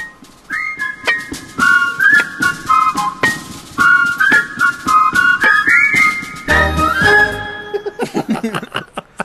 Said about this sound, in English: What is that whistling sound? It was us. It's us saying, hi-ho, hi-ho. Oh. It's off to mine we go.